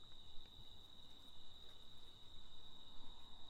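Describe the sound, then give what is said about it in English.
Insects chirp on a 7.5-mile trail at night in a steady, continuous high-pitched drone, like crickets, holding one shrill tone throughout with a soft rumbling background underneath and no talking. “Okay, cool. More bugs.”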